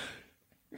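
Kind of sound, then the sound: human body sound, sneeze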